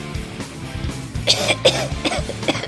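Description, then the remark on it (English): A man coughs several times in quick succession into a microphone, harsh, raspy bursts, with a low background rumble throughout and no talking. “And by talking, I mean coughing.”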